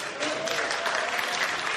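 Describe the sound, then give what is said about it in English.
A crowd claps for a woman who has just read a Bible passage aloud, a dense patter of many hands filling the whole stretch at a fairly loud, even level with no voices breaking through. “Y'all know y'all supposed to give her some claps.”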